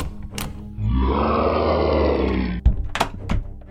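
A yeti on the landing of a house gives a deep, rasping monster roar that bellows for about two seconds, loud and sustained with a rough growling texture, then cuts off into a few sharp thumps and knocks.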